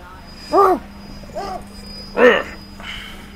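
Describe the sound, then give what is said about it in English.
Four short, high-pitched puppy yips, alternating louder and softer, with brief pauses between each and a low steady hum underneath, as the puppy is squeezed and tickled. “Squash you again. And we tickle the puppy.”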